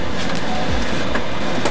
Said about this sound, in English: What's that sound? I don't hear anything. It's like a pulsing... Right. Rhythmic. What is this? What is this? So I'm used to it now. My printer. Prints.